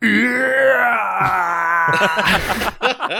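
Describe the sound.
A person imitates a ghostly scream, the Howie scream: a long, sustained wailing cry holding a high pitch for about two seconds, then breaking into rougher, strained bursts at the end.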